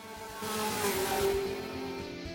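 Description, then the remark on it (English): The engines of two ridden motorcycles drone with a steady, buzzing hum and a wavering whine that swells louder over the first second as they come around a building, then holds at a strong, even level with no talking. “You start hearing the sound of motorcycles.”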